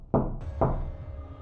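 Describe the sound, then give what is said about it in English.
Two heavy knocks on a door, about half a second apart, loud, each with a short resonant boom. No one speaks. “Open up the fucking door.”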